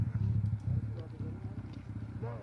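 A car with a 2005 Toyota Corolla engine drives in a played video, the engine droning steadily at a low pitch, moderately loud and continuous, with slight surges, sounding slightly thin and compressed.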